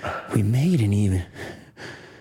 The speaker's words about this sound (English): Why are you breathing so heavy?